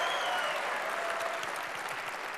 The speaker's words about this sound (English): Oh, that sounds like a golf clap. We're not at the Masters.